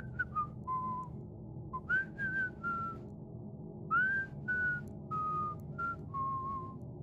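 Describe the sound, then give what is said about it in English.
Someone behind one of several doors whistles a wandering tune of short, clear notes that rise and fall in pitch, moderately loud over a low, steady background rumble, with no talking. “So, before you can go ahead and just start opening doors like crazy, from one of the doors you hear, like, whistling.”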